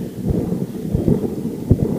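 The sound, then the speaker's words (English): A heavy base being unscrewed, producing a loud, continuous low rumble with gritty grinding bursts, resembling rolling thunder. No one speaks. “Can you unscrew the base on that, dude? Does it, like, completely come off?”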